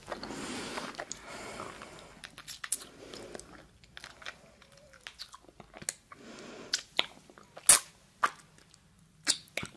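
Soft, wet chewing sounds of someone eating a marshmallow, with smacking and squishy mouth noises, irregular bursts of crunchy clicks and lip smacks, fairly quiet, with no talking.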